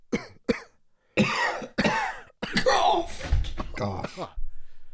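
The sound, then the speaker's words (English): A loud fit of coughing: a couple of short sharp hacks, then heavier, rougher coughs that run together in a raspy string before breaking off. “I don't know if that's allergies or just bad financial decisions.”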